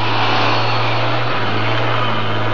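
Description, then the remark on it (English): A truck with its headlights on approaches in the jungle, engine running with a loud, steady low rumble and a broad hiss of road noise, unbroken for the whole stretch, with no voices. The truck carries a large derrick-like hoist on the back and is counterweighted in the front. “Sounds like the truck they were talking about. There it is. The headlights. It's coming this way.”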